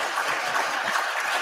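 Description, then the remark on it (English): Sustained applause from the Senate gallery on Capitol Hill as the bill funding care for 9/11 first responders, survivors and their families passed 97-2, a dense, steady wash of many hands clapping at an even loudness throughout, with no voices standing out. “The Senate gallery erupted in applause as the bill that essentially permanently funds care for 9/11 first responders, survivors, and their families overwhelmingly passed 97-2.”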